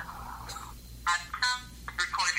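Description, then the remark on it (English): A cell phone call rings with no answer, short electronic tone bursts repeating at a moderate level, with a faint voice-like murmur in the background. “He's not answering his cell phone.”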